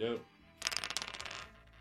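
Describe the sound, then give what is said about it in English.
A short burst of speech, then dice are rolled across a console to set a handicap, clattering in a quick run of sharp, rattling knocks lasting about a second before settling; one die is stopped from falling to the floor by a headphone wire hanging off the console edge. “Whatever you roll, the number, we take off 18. That will be your handicap for this afternoon. Roll those dice.”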